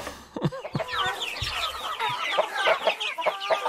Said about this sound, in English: All right, let me play you a couple sounds here, or clips of sound. Yeah. And you tell me whether these chickens are happy or exasperated.